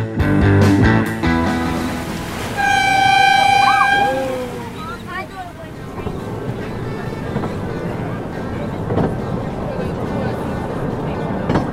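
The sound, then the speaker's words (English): A small red tourist train rumbles steadily along the long wooden Busselton jetty, travelling 1.8 km from the beach to the end of the jetty. It gives a clear, sustained horn toot near the start, and its rolling clatter continues afterwards with faint, indistinct voices in the background. “I'm on the little red Busselton jetty train, travelling up the 1.8 km from the beach to the end of the jetty.”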